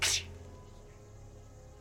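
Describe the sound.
A voice imitates a shovel breaking up dirt, like someone digging, with two short, hissing bursts, one at the very start and one at the end, separated by a near-silent pause.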